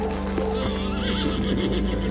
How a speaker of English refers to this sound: While Joseph grasps his head in pain, John gallops into the darkness.